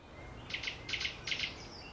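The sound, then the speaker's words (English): Birds chirp softly in three quick double bursts, high and bright, over a low steady background hiss; no one speaks. “The instant you think of that, you hear birds start chirping.”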